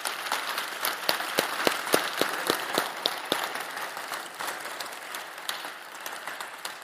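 An audience at a church service breaks into steady applause, a dense wash of many hands clapping with a few sharper individual claps standing out, holding at an even level for several seconds before tapering slightly.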